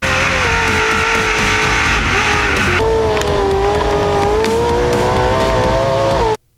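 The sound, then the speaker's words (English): A loud Borla aftermarket car exhaust roars continuously, its engine note rising and shifting pitch through steady revving before cutting off abruptly. No one speaks. “The sweet sounds of Borla's exhaust.”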